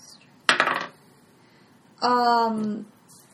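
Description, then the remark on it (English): Dice clatter briefly across a hard tabletop in a quick, rattling burst lasting under half a second, rolled for damage in a game, followed a moment later by a sustained voice. “Can I borrow your dice? roll damage.”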